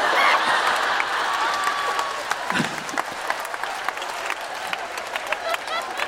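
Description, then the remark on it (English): A crowd applauds steadily for several seconds, a dense patter of many hands clapping, loudest at the start and easing slightly, with faint voices and cheers mixed into the clapping. “And if the audience applauded, I'd be like, oh, that's another one.”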